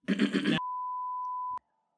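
A steady, high-pitched censor bleep holds one unwavering tone for about a second and cuts off abruptly with a small click. It follows a short burst of muffled, voice-like sound.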